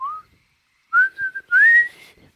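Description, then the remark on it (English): A person whistles a short melodic tune, a brief opening note followed by a few sliding, sustained notes, clear with no talking. “So I oftentimes, when I'm walking through jail, one of my whistle songs. Whistle song.”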